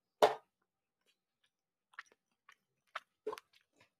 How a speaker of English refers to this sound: Just wanna chew this.